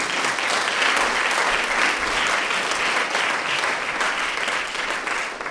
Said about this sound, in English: Please give Timmy a round of applause here.